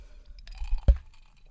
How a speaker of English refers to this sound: You hear that? Ice water. Some condensation on the glass. Oh, take me away, baby.